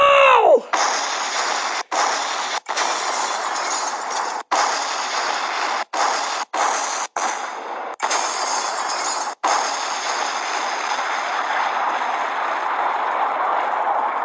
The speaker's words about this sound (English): What a beautiful explosion!